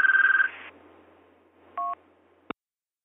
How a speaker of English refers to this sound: Hang on, I have a phone call. One of those calls that I don't care to answer, so we'll just let the phone ring and maybe they'll give up.